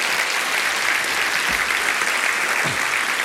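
An audience applauds steadily, a dense, even wash of many hands clapping at constant loudness with no voices rising above it.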